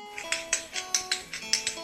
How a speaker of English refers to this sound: And this here is Thunder, the tap dancing pinto. Say hello, Thunder. Don't you show the nice folks what you can do?